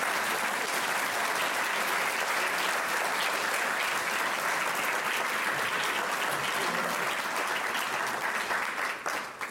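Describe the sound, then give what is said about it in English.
An audience applauds steadily for about ten seconds, a dense, loud wash of many hands clapping that holds level and only begins to thin right at the end. No voices rise above it. “So with that, I commend you for staying with us, a complicated and long and very informative technical discussion, and I hope you'll give all our speakers a chance and some applause.”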